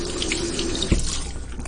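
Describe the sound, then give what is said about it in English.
Fresh coriander rinsed under a running tap: a steady, broad rush of water with small splashing flutters and one brief knock partway through, no voices. “And fresh sort of coriander, if you get it, you know, and you think, oh, I'm not going to use much of it, I'm just going to wash that.”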